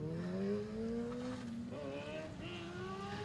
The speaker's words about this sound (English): So what just left is, I think that's like the first generation Chevy Suburban.